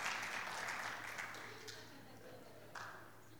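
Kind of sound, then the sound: crowd, faint applause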